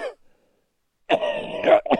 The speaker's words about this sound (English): excuse my cough.